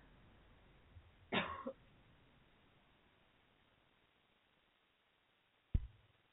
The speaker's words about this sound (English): Excuse me one sec. Now I have to cough. I'm so sorry. One second.